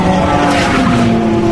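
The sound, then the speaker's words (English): A Porsche 919 race car roars past at the Porsche curve during the 2014 Le Mans race, its loud, high-pitched engine whine holding steady and then dipping slightly in pitch as it goes by, with no talking. “That was one of the Porsche 919s, that last one.”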